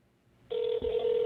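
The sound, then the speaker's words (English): After a moment of quiet, a steady electronic ringback tone starts, the sound of an outgoing phone call ringing through the line. It hums on continuously and fairly loudly, broken only by a soft thump. “Let's get him on the phone here.”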